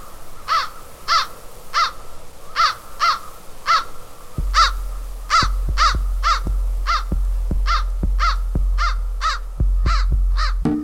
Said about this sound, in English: There Are a Lot of Birds to Listen to. Blue Jay.